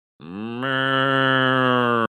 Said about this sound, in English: They put him in there with the little tyke phone. So he feels, yeah, now I'm talking business. Beep, beep, bawk, bawk. It's making cow noises.